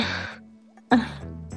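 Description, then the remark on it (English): Three short, breathy sniffs from a sick person who can't breathe well, separated by brief pauses, the middle one sharpest and loudest, with no talking around them. “I mean, yeah, I know, and I know it's probably, like, really annoying hearing me sniff every 2 seconds, but whatever.”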